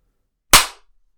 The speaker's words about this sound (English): and then we'll clap when it's that seconds on the time.is.